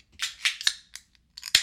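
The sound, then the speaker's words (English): A beer can being opened: a run of sharp metallic clicks and scrapes from the tab, finishing with a louder, crisp crack as it pops open. No voices. “I'm going to drink mine right out of a can.”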